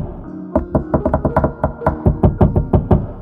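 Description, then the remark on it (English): A rapid series of about fifteen hollow knocks on a wooden cabinet, tapped in an uneven, patterned rhythm, fairly loud with no voices; the patterned knocking opens a cabinet. “It would appear that different knocks open different cabinets.”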